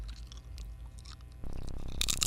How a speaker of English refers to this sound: It's really, I know, it's so funny watching both of them get so close to the mic and then just chew. This is what I feel like I sound like in class whenever I eat.